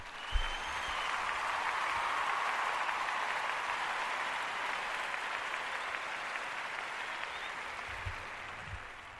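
A crowd applauds steadily for several seconds, a dense wash of clapping that swells slightly early on and holds fairly even throughout, with a few low thumps near the start and end.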